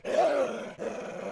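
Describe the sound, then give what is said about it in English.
A wolf growls and snarls at someone about 50 feet away without attacking, a rough, throaty rumble in two sustained bursts separated by a brief catch of breath, fairly loud and with no talking over it. “But it's growling and snarling at you.”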